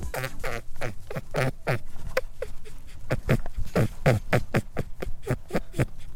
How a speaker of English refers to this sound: No, it's either a cat, a mouse, a dog, or a rabbit. Which one do you think it is? A cat, a mouse, a dog, or a rabbit? The correct answer is, drum roll, it was a rabbit.